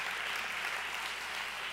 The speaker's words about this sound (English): So if you're excited for that, I heard a few, and you want to clap, go ahead and clap.